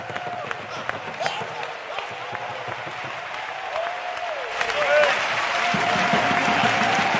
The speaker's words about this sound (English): Give the Lord a hand clap of praise and worship Him this evening.